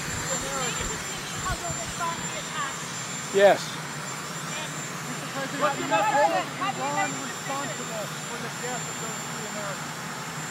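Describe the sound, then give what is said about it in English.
A helicopter engine runs on the White House grounds as a steady, loud mechanical roar and whine, with several people talking over it throughout as President Biden stops to take questions about the Houthis and Iran. “We have President Biden stopping to take questions about the Houthis and about Iran on his way to a helicopter on the White House grounds.”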